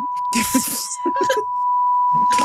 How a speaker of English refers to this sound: Why is Amber Alert calling my phone? Who's Amber and why is she alerting me?